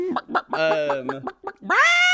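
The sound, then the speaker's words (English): A chicken squawk sound effect: several quick, choppy clucks leading into a sustained nasal cackle, then a loud, drawn-out final squawk, with no talking. “You've got a box that just says squawk.”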